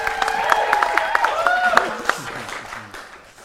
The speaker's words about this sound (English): We can have a clap for Ariana. Yeah, please.